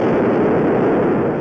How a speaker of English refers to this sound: The sound of that explosion. Eyes closed and hands over your eyes. It was a bit like thunder, but it was constant.